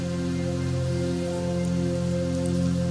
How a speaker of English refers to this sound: Here come the rain.